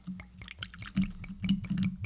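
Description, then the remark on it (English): Howlerhead liquor glugs and splashes as it is poured into a glass, a steady stream broken into quick gurgling bursts over about two seconds, with no voices. “I'll give yourself a pour. I don't want to give you too much.”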